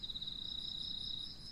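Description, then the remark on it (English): Crickets chirp at a retreat in a steady, continuous high trill that never pauses, fairly quiet against a soft low background hum, with no voices present. “Just letting the sound of the crickets lead you back here, sitting still.”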